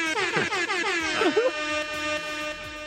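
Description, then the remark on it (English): A loud, brassy air horn blares continuously for about three seconds, its pitch wobbling and sliding at first before settling into a steady, piercing tone. “Cue air horn.”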